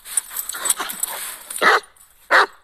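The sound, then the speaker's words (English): Mac the wolfhound gives two loud, deep barks in a studio, spaced well apart, after a stretch of busy, rustling background noise. “I will welcome back to the show Mac the Wolfhound for another segment of Wow or Woof”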